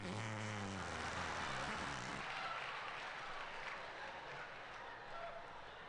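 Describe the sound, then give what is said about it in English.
A wet, buzzing fake fart made by squeezing the crook of an arm sputters loudly for about two seconds, then gives way to a steady rush of noise like clapping. “Or as we called it in New York, the artificial fart under the arm!”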